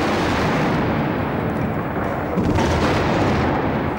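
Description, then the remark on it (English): Explosions from the U.S. military bombardment by warships and planes opening Operation Iraqi Freedom, the invasion of Iraq, roar as a dense, continuous rumble for about four seconds, heavy booms blending together, with a slightly stronger surge partway through and no voices. “U.S. warships and planes launched the opening salvo of Operation Iraqi Freedom.”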